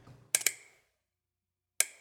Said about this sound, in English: I'm holding the X1D from Hasselblad. Whoa. The really beautiful mirrorless medium format camera. I'm gonna let you hear it. Oh, weirdest shutter ever. Yeah. Really strange. That's really quiet. It's like clicking your teeth. Like, listen to it again.